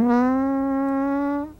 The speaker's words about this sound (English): Sorry, I farted.